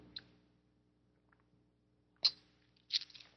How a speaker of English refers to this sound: And take a sip of my tea here.